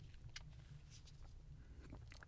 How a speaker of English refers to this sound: holding an organic apple mango fruit slosh fruit sauce crushers. And I just want to open it up right here. So, yeah. You hear that? So, everyone open up your applesauce crushers and take a sip with me.